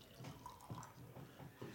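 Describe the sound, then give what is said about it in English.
Raspberry mead being poured from a bottle, a steady stream with soft repeated glugs and splashes over about two seconds, with no voices. “So while we're pouring this, where are you physically located?”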